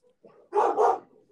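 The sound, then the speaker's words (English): A dog barks twice in quick succession, two loud woofs rising out of quieter low rumbling sounds, with no talking. The dogs bark because they think someone is here. “Can you tell your dog to shut up? I know. Our dogs think someone's here.”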